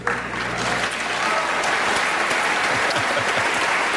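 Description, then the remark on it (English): Sustained audience applause from a large crowd at the 2013 Scripps National Spelling Bee, a dense steady wash of clapping that stays loud and even throughout, with no voices standing out. “Enough applause.”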